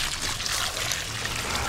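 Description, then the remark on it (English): Water caught instead of going down the drain pours steadily from a pail onto roses outside, in a continuous splashing stream, fairly loud, running for the full length without pause. “When that gets full, we water outside with it.”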